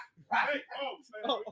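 A pet dog barks in three quick, loud bursts, each a short, yelping cry in rapid succession with no talking.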